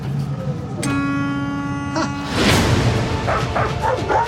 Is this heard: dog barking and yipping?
yes